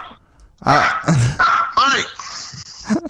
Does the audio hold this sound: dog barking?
yes